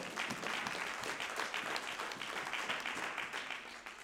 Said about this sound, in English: Praise God. I'll clap my hands on that one. Amen.